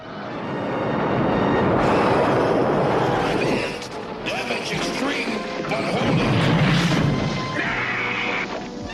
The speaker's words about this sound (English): So then the asteroid is hit and it explodes, showering Astro Train with shards of rock. Pieces even pierce his outer hull and fly inside, hitting Megatron in the shoulder.